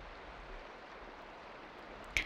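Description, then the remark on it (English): A soft, steady hiss of rain pattering onto water, continuous and even throughout, with one brief sharper chirp near the end. “Maybe now you might want to tune more into the sounds of the water and the sound of the rain on the water.”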